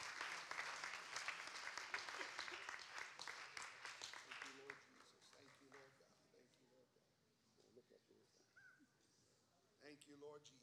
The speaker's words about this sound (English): Go ahead and give the Lord another hand clap of praise as you're making your way back.